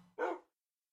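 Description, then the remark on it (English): A dog lets out a single short, sharp bark, with a faint low hum just before it and silence afterward. “You're barking.”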